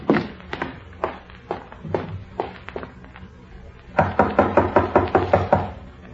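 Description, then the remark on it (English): Knocking on a wooden bedroom door in the morning by a brother and sister trying to wake their mother: a slow series of single raps, a brief pause, then a faster, louder burst of repeated knocks, with no voices. “When there was no answer to their knocking, they opened the door and stepped into the room together.”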